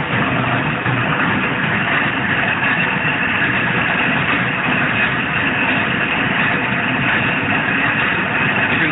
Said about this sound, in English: Engine ahead of us again. They are quite pacey. Again, about that 400, 500 metres ahead.